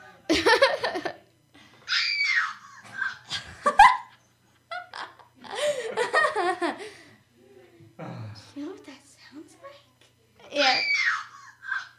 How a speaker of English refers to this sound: What is that sound called? Is it called woman giving birth? Girl scream. Girl scream. It sounds like a woman giving birth.